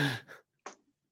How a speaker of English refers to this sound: So sorry, I just need to clear my throat.